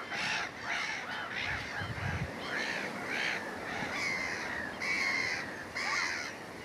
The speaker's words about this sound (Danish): Men altså, mågerne, de har deres fri. Og de har også, hvad skal man sige, når man er så tæt på dem som her, så kan man jo se, hvordan de interagerer. Og når du har et par, for eksempel, af de her stormmåger